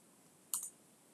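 A couple of quick, crisp computer keyboard taps close together, sharp and brief against an otherwise quiet, faintly hissing background with no voices.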